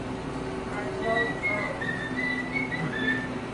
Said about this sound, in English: Is she whistling through the gap in her teeth?